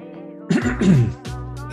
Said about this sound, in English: Let him clear his throat.